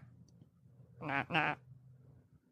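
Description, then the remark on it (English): Two quick, nasal quacks from a toy duck wearing a hat, back to back and fairly loud, standing out against a low background hum with no talking. “It's a little duck with a hat on.”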